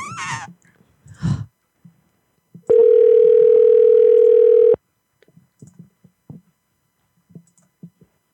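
A single loud, steady telephone ringing tone of an outgoing call to the Honolulu Habitat for Humanity ReStore, a flat electronic buzz lasting about two seconds, with scattered faint clicks and brief noises before and after it.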